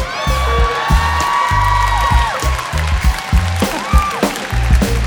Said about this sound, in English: I've never gotten applause for it before.